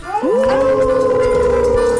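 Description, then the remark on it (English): Several voices on a host's Moondog Show let out a long, sustained howl together at the Moondog, imitating dogs, rising quickly then holding a steady wavering pitch, loud, for nearly two seconds. “And we're going to howl at the Moondog.”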